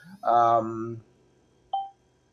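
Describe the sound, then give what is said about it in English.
A device notification beep: one short, clear electronic tone near the end, following a louder, longer harmonic sound at the start. “Sorry, notification go away. Notification go away.”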